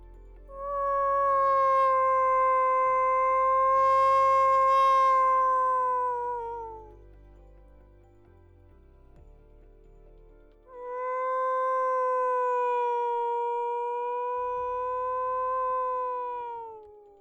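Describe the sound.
A person imitates a wolf howl twice toward wolves: two long, sustained tonal howls, each several seconds, gliding slightly downward at the end, with a brief quiet gap between them. Loud.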